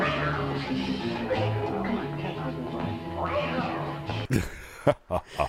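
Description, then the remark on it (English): A cartoon voice meows in drawn-out, wavering cries over busy background music, then a few sharp clattering bursts end it. The meows are a voice imitating a cat: the cartoon character Mickey, a cat burglar, meowing during a painting heist. “And Mickey's constantly meowing because he's a cat burglar.”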